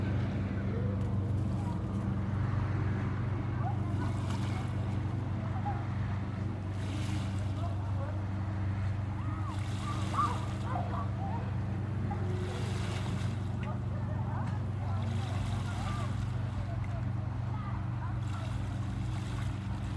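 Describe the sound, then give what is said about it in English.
Lake waves slap against the shore off to the left in irregular splashes every few seconds, over a constant low rumble of wind and open water, on a warm summer day. “You hear the waves slamming over to the left.”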